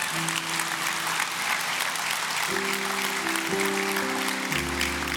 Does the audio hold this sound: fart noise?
no